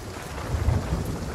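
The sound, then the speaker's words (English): A low, rumbling thunder crash swells briefly over a steady wash of rain, its deep boom peaking midway before settling back into the storm noise. “Ow! Ah! Lightning again!”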